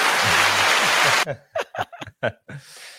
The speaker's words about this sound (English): All righty. Let's give it an applause.